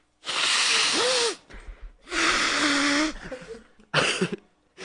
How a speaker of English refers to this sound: That was a baby crying. No, it's a sound effect. It's inside the soundboard.